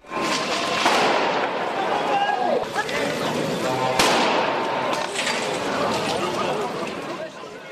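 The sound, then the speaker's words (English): A loud street protest by farmers against rising costs and EU regulations in Luxembourg Square, Brussels, outside an EU summit, with tractors parked there: a dense, continuous crowd din of shouting voices, broken by several sharp firecracker-like bangs, with one especially strong crack around the middle. “Yes, a number of farmers protesting against rising costs and EU regulations parked their tractors in Luxembourg Square, some even pelting eggs at law enforcement.”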